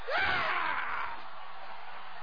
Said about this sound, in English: Howard Dean, I love that scream we have of him going nuts and like losing the candidacy last, a million years ago.